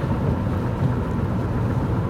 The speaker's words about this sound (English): Even when the world wants to rain on what you're doing, as the rain is falling before me right now.